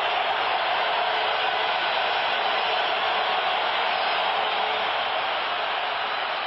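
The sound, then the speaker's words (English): A football stadium crowd roars to distract kicker Hank Alissa during a 43-yard field goal attempt in a Lions game. The roar is one steady, loud wash of noise that holds without letup for several seconds, with no voices speaking over it. “Listen to this crowd noise, trying to distract Hank Alissa.”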